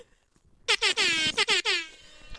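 A loud air horn blares in a rapid series of about five short blasts, bright and brassy with rich overtones, starting after a brief quiet moment and fading out at the end.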